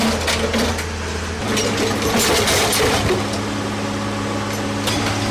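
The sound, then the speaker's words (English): Heavy-duty equipment crushing confiscated motorcycles (okadas) in Lagos: a steady low engine drone under continuous loud crunching, splintering and scraping of metal, with sharp cracks and pops breaking through irregularly. “That's heavy-duty equipment crushing confiscated motorcycles.”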